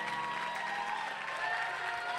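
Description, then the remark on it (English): A church audience claps steadily and continuously for the people who are going to be baptized, a dense wash of many hands applauding at moderate loudness, with faint cheering and a few voices blended underneath. “Please, let's clap for them.”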